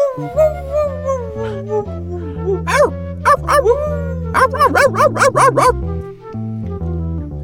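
A dog barks in two quick flurries, a few sharp yaps and then a longer rapid run, sounding out clearly over a steady, bouncy musical backing.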